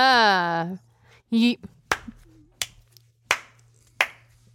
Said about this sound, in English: I'm condescendingly clapping. Can you tell? No, it sounds like a regular clap. Yeah, damn it just sounds like a regular clap.